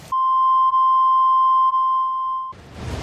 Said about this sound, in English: I'm trying to turn it down when the beeps come.